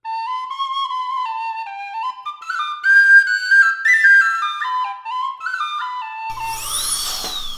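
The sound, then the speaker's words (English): A bright whistled melody of stepping notes gives way to a high, whining dental drill that whirs up and down in pitch for the last second or so. “And now, a news update from the dental chair.”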